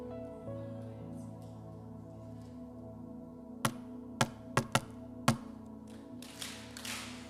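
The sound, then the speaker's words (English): Five sharp, loud knocks on a door in an uneven rhythm with a brief pause before the last one, over a steady low droning background. “Jesus' knock, the reason why he's knocking is he wants a response.”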